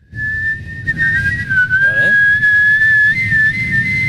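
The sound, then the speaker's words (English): A person whistles one steady, shrill high note for about four seconds, wavering slightly in pitch like a boiling kettle, over low rumbling background noise with a brief voice sound midway. “My Australian like kettle is boiling with my Australian blood.”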